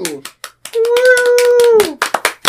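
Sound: hands clapping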